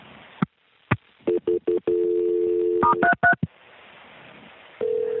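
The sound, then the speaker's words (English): A quick sequence of telephone keypad tones as an emergency call is transferred: several short beeps and a longer held tone, then a few higher paired tones, ending in a steady tone over faint line hiss. No talking. “Let me try it one more time before I transfer you.”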